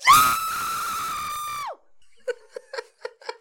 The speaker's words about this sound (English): Let's get ready on the levels for a scream.